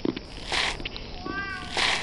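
A cat gives a single short meow in the middle of the moment, set between brief bursts of hissy rustling noise.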